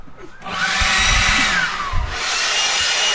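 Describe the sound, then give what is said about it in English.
A voice imitates a cordless leaf blower in a mock leaf blower battle, with a loud, steady breathy roar and a rising whine, kicking in after a brief pause and holding for about three seconds, punctuated by low rumbling pulses. “Leaf blower battle!”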